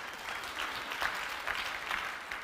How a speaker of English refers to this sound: Thank you, media people. Would you give them a round of applause tonight?